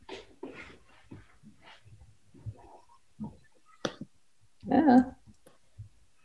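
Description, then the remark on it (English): A few sharp, dry clicks, like a mouse button advancing slides, come at irregular moments amid faint, muffled voice sounds and low background noise. “Yeah, but you are clicking on the slides.”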